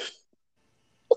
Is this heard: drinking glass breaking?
no